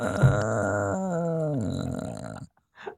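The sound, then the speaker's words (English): A drawn-out, raspy vocal moan imitating a creaking door, holding a steady low pitch before sliding downward and stopping after about two and a half seconds, followed by a brief faint breath. “That sounds like a door creaking open.”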